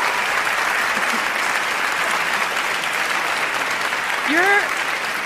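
Steady applause from a crowd fills the whole stretch, a dense even wash of clapping, with a brief rising vocal tone or whoop cutting through near the end.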